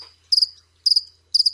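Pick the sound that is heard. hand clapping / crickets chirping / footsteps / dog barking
crickets chirping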